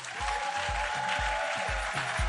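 An audience claps steadily throughout, a dense wash of applause over a steady, booming low beat that lands about twice per second with a sustained musical tone beneath.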